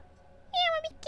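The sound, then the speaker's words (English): A voice imitates a cat with two meows: a drawn-out, slightly falling mew, then a shorter one after a brief pause, loud against a quiet background. “Get that cat out of my Brimstone Suite!”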